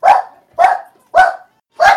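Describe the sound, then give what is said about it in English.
Household dogs barking in a steady run of four loud, sharp barks, evenly spaced about half a second apart, with no talking over them. “Our dogs are going crazy.”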